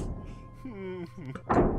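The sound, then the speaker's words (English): A single dull thump of something running into a door lands near the end after a brief wavering tonal sound. The impact is fairly loud, over a low background rumble. “And you can hear from your side a dull thump. And you can see on the cameras that it's just running into this door.”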